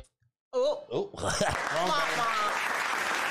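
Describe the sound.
A crowd breaks into steady, dense applause for sponsors, holding for about two seconds, opened by a brief whooping cheer from a voice just before the clapping swells.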